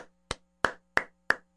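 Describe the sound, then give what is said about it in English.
A single person claps their hands four times in a steady, evenly spaced rhythm, each clap sharp with a quick decay, and a faint steady hum sits underneath. “I'm just going to clap.”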